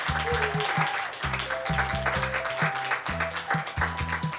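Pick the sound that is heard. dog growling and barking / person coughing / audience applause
audience applause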